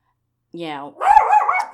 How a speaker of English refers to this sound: Ow! No. Sorry, my dog likes to get involved. He's very upset too.